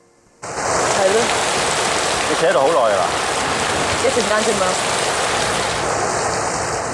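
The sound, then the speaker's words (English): Steady, heavy rain begins abruptly and pours down in a constant hiss in a film scene, with a few faint, indistinct vocal sounds surfacing briefly beneath the downpour. “In one very moody scene in the rain, Mr. Zhou offers to bring Ms. Chen home.”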